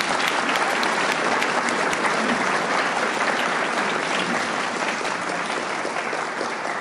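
Sustained audience applause at a recovery group meeting for a speaker who has just finished, a dense, steady wash of many hands clapping at an even loudness for several seconds, with no one speaking over it.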